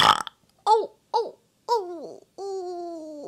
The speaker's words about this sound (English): Now it's time for me to burp.